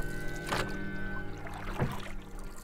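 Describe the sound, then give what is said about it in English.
A person paddles a boat back towards town: two splashy paddle strokes dip into water about a second apart, over a steady low background hum with no voices. “I had to turn away and paddle back towards town as fast as I could.”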